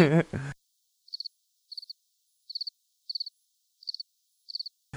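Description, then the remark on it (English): A cricket chirping sound effect in a steady rhythm, seven short high-pitched trills, each a quick cluster of pulses, clear against silence after a brief moment of someone talking at the start. “I really wish I had a cricket sound to bite on my phone.”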